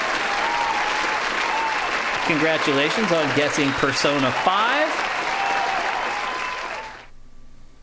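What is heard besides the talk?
applause sound effect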